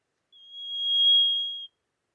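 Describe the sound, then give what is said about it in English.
A single high, pure bell tone in a music track rings for about a second and a half, swelling gently in loudness before stopping abruptly, with a whistle-like quality resembling the call of the olive whistler, a Tasmanian bird. “We also have the bell. To me, this sounded a lot like a skulking bird we have here in Tasmania, called the olive whistler.”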